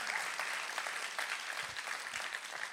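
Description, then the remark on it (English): A church audience claps steadily for the people who set up church on the west side at the Miguel Contreras, the Zoe Kids and the parking lot team: a dense wash of many hands striking at once that holds an even level for a few seconds, with no voices standing out. “By the way, can we just clap real fast for the people that set up church on the west side at the Miguel Contreras?”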